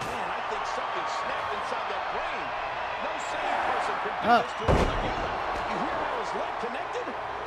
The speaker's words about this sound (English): picks up the chair and hits him again.